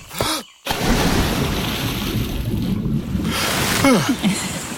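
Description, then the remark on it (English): A brief hush, then a person who has run dive-bombs into water, followed by loud, steady churning and rushing water noise, like being surrounded by bubbles and surf for several seconds; recorded as binaural 3D audio. “So I run and dive bomb into the water.”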